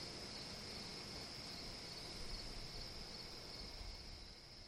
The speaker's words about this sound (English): It stays with you, even in the middle of the night, at 4 a.m., when you've woken with a harsh taste in your mouth, and you're writing on a yellow legal pad in the dim light, and only the crickets and the wind outside, like now.